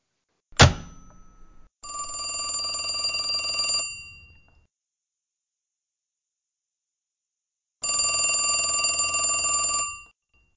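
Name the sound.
telephone bell ringing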